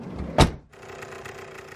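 A sharp mechanical clunk as a monster truck door opens, followed right away by a steady electric motor whir as a retractable booster step automatically drops out of the frame, with no talking.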